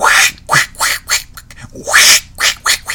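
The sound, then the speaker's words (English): A person imitates a duck, letting out a rapid run of about eight loud, raspy, nasal quacks with short gaps between them and no other talking. “That's my best duck impression.”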